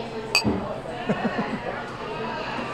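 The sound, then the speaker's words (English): A single bright clink of glasses of French 007 cocktails, a twist on a French 75, touching in a toast rings out near the start, followed by murmured voices talking softly in the background. “Ah, here we are. My French 007. Well, let's tuck into these. Cheers. Cheers.”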